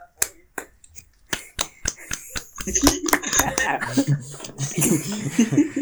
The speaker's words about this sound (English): Clap for him.